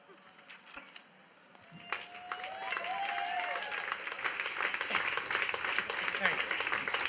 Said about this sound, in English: Now, please give it. I'll do this. I'll do this again. Let's get some applause, some serious applause here.